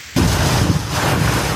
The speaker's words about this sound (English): South of Jackson, Mississippi, strong winds and drenching rain pummeled a highway, making driving dangerous.